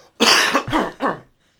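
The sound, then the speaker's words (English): A loud cough in three quick bursts, harsh and chesty, followed by silence; no one speaks during it. “Hold on, I'm going to cough.”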